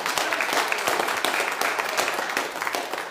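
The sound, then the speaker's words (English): A crowd bursts into sustained applause as a hand clap of praise to God, many hands clapping at once in a dense, steady roar of claps, with a few voices faintly mixed in. “Give him a hand clap of praise if you believe that.”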